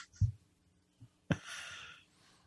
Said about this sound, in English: So today is Sunday as we record this. I'm yawning. I'm so sorry, folks.